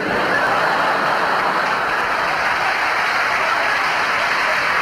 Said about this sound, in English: For our last number, I'd like to ask your help. Would the people in the cheaper seats clap your hands? And the rest of you, if you just rattle your jewellery.